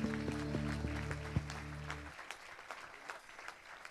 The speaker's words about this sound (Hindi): क्या आप लोग खुदावन का ताली बजा के स्वागत कर सकते हैं?